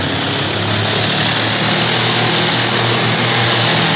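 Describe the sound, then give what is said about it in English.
A propeller plane's engine roars loudly and steadily in a dive, a dense droning rumble that fills the whole four seconds without letting up, with no voices over it. “Turn her over and let's head right back in the prop of that pursuit plane.”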